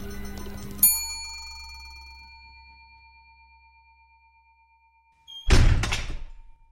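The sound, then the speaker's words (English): A bright ding rings out and slowly fades, the third and final one, then after a pause the heavy, locked front doors of a hotel slam shut with a loud, booming crash and a short rattling clatter. “The doors slammed shut, and I heard Ren, Lilla, and Ozzy start pounding against them.”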